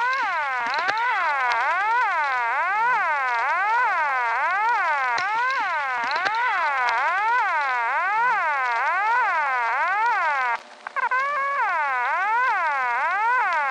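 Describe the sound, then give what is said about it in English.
A loud siren, isolated from a phone hotline recording, wails on its own, sweeping up and down in quick, steady cycles of about one per second, with a brief dropout before continuing. No one speaks. “you're going to hear simply that siren that has been isolated.”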